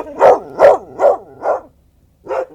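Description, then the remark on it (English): A dog barks five times in a quick, fairly steady rhythm, with a short pause before the last bark; the barks are loud, with no talking. “Quiet, Rufus. I've had enough with that dog from number 72.”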